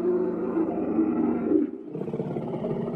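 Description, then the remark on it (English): A loud, deep roar of a dinosaur, a pure white Spinosaurus emerging from a jungle, rumbles and growls continuously for a few seconds, then its pitch shifts into a rougher, throaty snarl. No voices accompany it. “As you guys are exploring the jungle, you hear a loud roar.”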